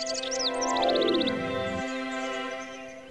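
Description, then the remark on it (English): Bright bird chirps and a quick run of repeated tweets in a woodland sit high above a steady, sustained tonal drone that slides downward partway through, with no voices present. “I'm now here standing in a woodland.”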